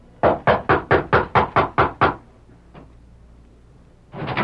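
About nine quick, evenly spaced raps on a wooden door, close and loud in a steady rhythm, followed by a couple of seconds of quiet before another sound begins.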